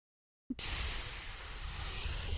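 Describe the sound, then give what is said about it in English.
A person imitates water filling a bucket with a steady, breathy hiss that starts abruptly after a brief silence and holds evenly for about two seconds, bright and airy with no talking. “Filling a bathtub. A bucket. There it is. Yes. It's a bucket?”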